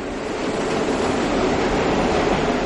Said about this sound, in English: I was at the 79th Street and Broadway stop. By happenstance, all four trains came in at the same time, and the noise was really mind-boggling.